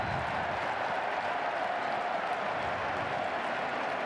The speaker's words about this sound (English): I think a little Bronx cheer from the Texas fans applauding Duvernay not bringing it out.